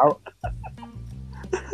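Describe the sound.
A cartoonish fart sound effect: a low, buzzy, sputtering blurt that holds for over a second with slight pitch wobbles, after a short burst of voice-like chatter.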